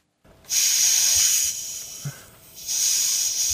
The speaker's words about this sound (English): And you can hear hoovering in the background. And we start with that noise of air being released from a tyre.